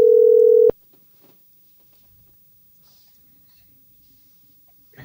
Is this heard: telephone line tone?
yes